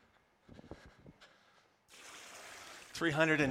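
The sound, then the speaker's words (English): Water pours out of a gallon jug in a steady, rushing splash lasting about a second, and a voice starts up right after. Brief sounds come just before the pour. “she filled up her gallon jug and she ran back. And if I splash you, I'm very sorry.”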